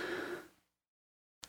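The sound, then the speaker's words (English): A loud, breathy gasp for air, fading out over about half a second, followed by silence and a short sharp intake of breath at the end; a person gasping and breathing in while trying to strengthen their lungs to speak. “So you may hear me gasping for breath and intaking as I'm trying to really strengthen my lungs and get enough to speak words that are proper English words.”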